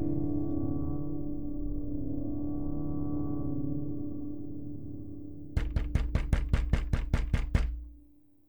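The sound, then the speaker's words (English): A low, steady mechanical drone hums for several seconds, then gives way to a quick, even run of about nine loud, heavy poundings on a door by giant robots trying to break it down, stopping abruptly. “Harry Seldon woke to the sound of giant robots trying to break down his door.”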